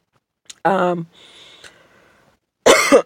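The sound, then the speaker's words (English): A harsh cough with a rough voiced edge from a speaker who is under the weather, followed after a quiet pause by another loud, sharp cough burst. No talking, just the speaker coughing. “That is so rude for me to cough in your ear, and so I really apologize.”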